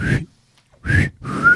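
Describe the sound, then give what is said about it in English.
Clear whistling in short bursts, the last two sliding upward like a wolf whistle, with brief silent gaps between and some breathy low noise under each note. “I got wolf whistled by … while riding my bike.”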